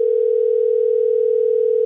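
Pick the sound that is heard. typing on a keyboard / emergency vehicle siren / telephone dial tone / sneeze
telephone dial tone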